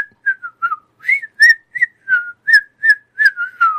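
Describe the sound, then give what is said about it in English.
A person whistles a quick, wavering tune by drawing air inward, producing breathy, slightly squeaky notes in short bursts, fairly loud with no talking. “Sounds like you're sucking instead of blowing.”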